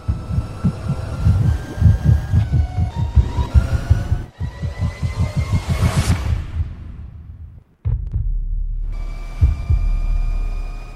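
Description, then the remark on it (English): A synthetic electric vehicle warning whir played from the maker's website: a steady tonal hum with a rhythmic low throb, swelling into a brief swooshing sweep, cutting out for a moment, then returning as a sustained drone. “So I'm going to play the whirring sound off their website, and so everybody can hear it.”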